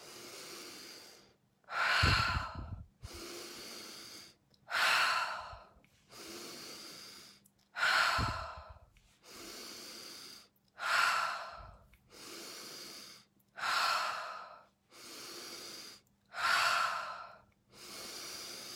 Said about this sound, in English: We're going to do 7 more breaths, 3 sets of 7 breaths, breathing in through your nose. Let's begin now.